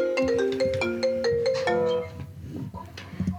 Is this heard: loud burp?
no